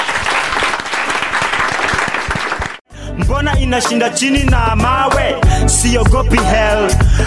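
A crowd applauds loudly with dense, steady clapping for about three seconds, then it cuts off abruptly and upbeat music with a strong bass line takes over.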